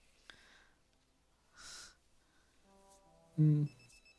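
A short electronic pager tone buzzes up near the end after a soft click and a breathy rustle, fairly quiet overall with faint high beeps trailing after it.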